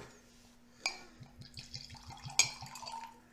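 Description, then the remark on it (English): Japanese whiskey, 48% alcohol by volume and aged in Japanese cedar, glugs from a bottle into a glass in a quick, rhythmic series of gurgles, bracketed by two sharp glass clinks, fairly quiet, with no talking. “I'll let you master your own pour there, sir.”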